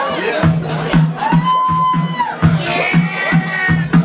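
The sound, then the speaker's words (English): A lively live audience at the Grape Room in Manayunk, Philadelphia, cheers and whoops in a dense, loud roar, with one long high whoop rising above the noise and a steady rhythmic pulse, like clapping or stomping, running underneath. “Wow, sounds like a fun crowd. Let's get loud and let's see what we can do. Make some noise.”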